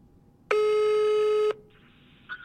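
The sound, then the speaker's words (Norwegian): The ringing tone of an outgoing phone call sounds once: a loud, steady electronic buzz held for about a second, then it cuts off and leaves faint line hiss. “Oi, kom det en ny lyd. Nå ringer jeg.”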